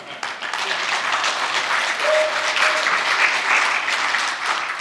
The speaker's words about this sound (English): I don't want you to clap for me. I want you to clap for God because God does those kind of things.